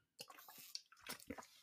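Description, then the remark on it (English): Someone takes a few quick, wet sips of water, with short slurping and swallowing sounds in an uneven rhythm and no talking. “Excuse me, drink some water.”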